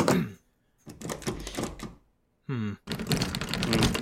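Loud metallic rattling and clunking comes in two bursts as a stuck door lock on a door that won't open is jiggled hard, broken by a short pause and a brief squeaky creak.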